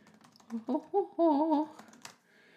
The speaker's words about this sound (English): Oh, don't you love that? You can hear me typing. It's so like organic.